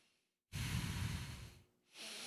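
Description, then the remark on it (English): A person loudly imitates heavy, steady breathing: one long, rushing breath lasting about a second, a brief pause, then another breath beginning, with no talking. “She was like, I breathed heavy and steadily to make sure he knew I was asleep.”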